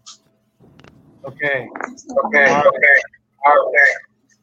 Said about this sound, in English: Okay. Someone's got an echo. Somebody's got. Okay.